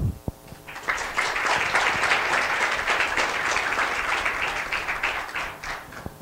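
An audience bursts into applause after a few scattered early claps, the dense crackle of many hands holding steady and loud for several seconds before thinning out at the end.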